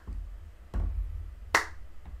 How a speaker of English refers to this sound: Wait, what are we clapping for?